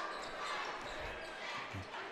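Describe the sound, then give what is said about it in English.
A basketball thuds against a hard gym court a couple of times, low and dull, as a player dribbles it over midcourt during a Wildcats game, nearly buried beneath a steady roar of crowd noise. “He's got the dribble.”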